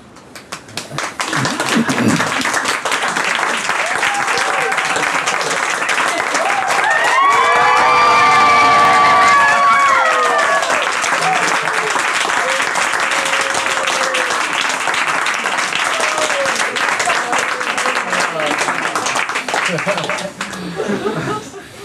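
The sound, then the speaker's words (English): A crowd breaks into sustained applause, steady dense clapping lasting about twenty seconds, with bursts of cheering and a few whoops rising over it midway. “I think you should give yourselves a round of applause.”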